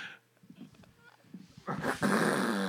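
A dog growls low and rumbling, the snarl building into a louder, harsher outburst toward the end.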